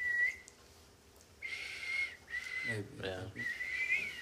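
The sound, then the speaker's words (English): A person whistles in a few breathy, wavering bursts with short gaps between them, and a brief voiced murmur cuts in midway before the whistling resumes. “I used to whistle real good.”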